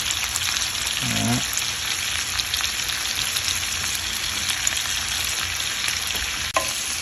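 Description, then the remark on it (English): Mushrooms, red onions and red bell pepper sizzle steadily in a pan, a dense crackling hiss throughout with a soft low clunk early on and a brief sharp tap near the end. No one speaks. “I'm just gonna let all that cook and marinate.”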